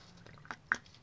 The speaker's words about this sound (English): Sorry, I'm sipping my tea.